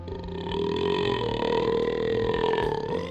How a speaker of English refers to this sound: Oh, Scorpion Ball in 5 minutes? That's gotta be a restaurant record. Well, right now I'm gonna go for another restaurant record. Longest burp.